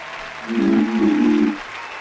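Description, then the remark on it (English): A brief burst of crowd cheering and clapping swells up for about a second, then fades back into a steady hiss of background noise. “Where's my cheering?”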